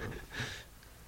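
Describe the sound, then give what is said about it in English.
A dog snorts and sniffs, with a quick breathy burst followed by a fainter short sniff, heard on its own with no talking. “Dude, your dog.”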